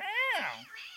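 A cat meows once, fairly loud: a drawn-out call that rises, then slides downward, trailing off into a softer, lower murmur.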